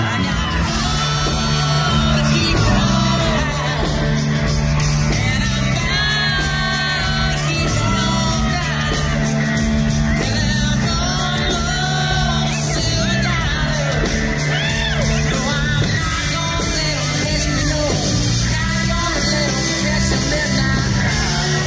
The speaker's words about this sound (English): But you can hear the crowd is losing their mind. It's a big surprise.